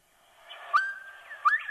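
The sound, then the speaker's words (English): A bobwhite quail calls with two clear, whistled notes, the second sweeping sharply upward, over a steady hum of faint background noise. “Sounds like the bird is saying Bob White. Yeah. That's where they get the name from, Bob White Quail.”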